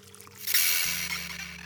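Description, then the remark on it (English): Water pours steadily into an empty water glass, a bright, hissing splash that starts a moment in and keeps running, with a low electrical hum underneath. “Water spirit appears, filling the glass before being dismissed.”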